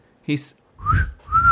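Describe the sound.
A brief vocal sound, then two eerie whistled notes, each rising and gently bending in pitch, clear over a low rumble, likely a person imitating a strange whistling noise heard throughout a home.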